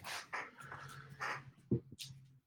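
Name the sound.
dog panting and whimpering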